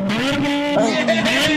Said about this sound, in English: Oh, you hear that? Oh! I mean, yeah, it sounds like a motorcycle. Oh, and by that I mean for two. Come on, here, look, I'm going to put my phone up to the exhaust pipe.